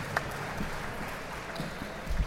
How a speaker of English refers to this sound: And y'all should give yourselves a round of applause.